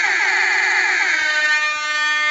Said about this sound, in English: Let me sound that alarm.